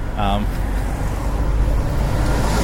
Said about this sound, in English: Here's a bus going the other way, though.